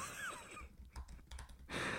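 A brief burst of quick, light computer keyboard typing as a search is typed into Google, several soft clicks in an irregular run, set against a steady hiss of background noise.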